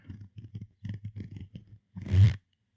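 A run of short, rhythmic ratcheting scrapes close to the mic, ending in one louder, quick rasping zip as a hoodie zipper is pulled.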